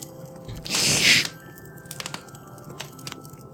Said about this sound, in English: Another box. This is a smaller box today. That's good. I'm going to open this one up.